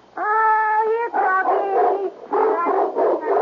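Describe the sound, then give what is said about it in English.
A Doberman Pinscher vocalizes in a series of loud, tonal yelps and whines, starting with one long sustained cry followed by several shorter, wavering whimpering barks, with no talking. “Yes, a Doberman Pinscher. It's a present from the National Kennel Club.”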